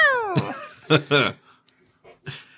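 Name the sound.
hungry cat meowing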